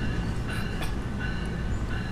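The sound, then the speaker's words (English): A New Jersey Transit commuter train rumbles past a train station behind a cul-de-sac home in New Jersey, a steady heavy low roar with faint metallic ringing and brief higher squeals over the rolling of the cars. “There's the train. Woo!”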